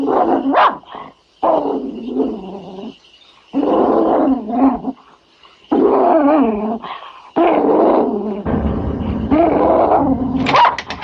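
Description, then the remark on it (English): A dog, Butch, in a movie growls and snarls in a series of loud, rumbling bursts separated by short pauses, building to a sharper snarl near the end. No one speaks. “Dude, the fucking dog out-acts her.”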